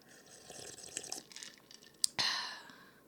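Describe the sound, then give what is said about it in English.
Sipping of a green drink: soft wet mouth clicks and small slurps, then a sharp lip smack followed by a longer airy slurp. Quiet and intimate, with no talking. “So, sip interlude of my green drink.”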